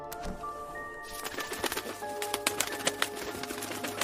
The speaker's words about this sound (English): Oh my. A raven. An honest to God raven?